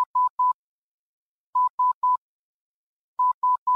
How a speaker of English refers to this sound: On December 12, 1901, Marconi went to St. John's, Newfoundland, where he successfully received a wireless transmission from a station in Portsmouth, England. The transmission was the letter S in Morse code, of course. It just went dit, dit, dit.